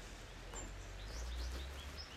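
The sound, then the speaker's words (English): Small finches chirp in a quick scatter of short, high, thin notes, soft over a low background rumble, with no one talking. “And the little finches, they're so cute. They're little and loud.”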